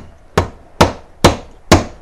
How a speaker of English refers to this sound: And you don't want to hammer these down too much, or else you'll pinch into the sheathing and you can short the wire out.